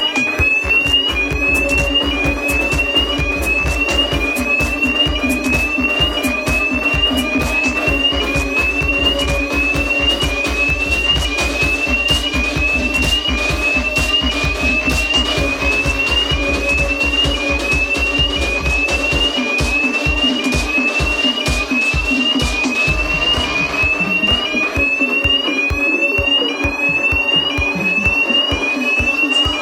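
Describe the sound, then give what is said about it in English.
A loud fire alarm sounds continuously at London Bridge, England, repeating a rapid rising whoop-whoop tone over a steady electronic drone, with rhythmic pulsing underneath; no voices are heard. “He sent that message by Facebook, but basically, from London Bridge, England, whoop, whoop, with the fire alarm.”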